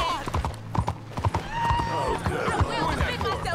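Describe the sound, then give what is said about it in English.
Rapid hoofbeats of a galloping horse in a video game, dragging a woman behind it on a rope, pound steadily, with a man's voice talking over them and a few high whinny-like tones sliding through. “You're dragging a woman behind a horse on a rope.”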